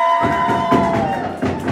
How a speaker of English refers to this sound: Oh, banging of furniture.